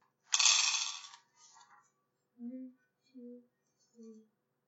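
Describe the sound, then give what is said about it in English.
A quick clattering rattle of five dice tumbling across a surface, lasting about a second, followed by a pause and three short, soft voiced sounds evenly spaced. “Yeah, so you're going to be rolling 5.”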